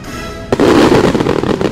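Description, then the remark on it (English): Fireworks fire out of the France Pavilion, launching with a sudden loud boom after a brief quiet hum, then a dense, sustained roar of crackling bursts and pops continues to the end. “Firing out of the France Pavilion.”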